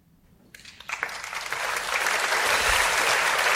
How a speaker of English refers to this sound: I don't even feel good about the applause.